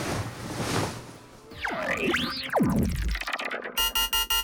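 After a hazy wash of noise and swooping, warbling whooshes, a loud electronic alarm starts beeping in quick, even pulses, about five sharp tones repeating steadily at the end.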